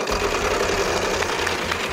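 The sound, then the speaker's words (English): A heavy game show prize wheel is given a final spin, with a rapid, steady mechanical clatter, its pegs ticking in a fast even rhythm throughout, fairly loud and with no voices over it. “but I'm going to give the wheel a final spin.”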